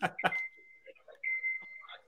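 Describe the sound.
A truck's reversing beeper sounds twice, each a long, steady, high-pitched tone, after a couple of sharp knocks, with faint murmuring voices underneath.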